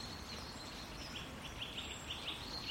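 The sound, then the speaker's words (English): Small woodland birds chatter faintly, a string of quick high chirps repeating over a steady outdoor hiss, with no one speaking. “Wow, they're chatting to each other. It's like gossiping.”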